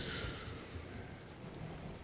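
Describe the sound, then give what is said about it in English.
Steady, even rainfall hisses softly and continuously, with a low rumble of thunder underneath. No voices are heard. “With a pitched tent, a campfire, it's nighttime, it's raining”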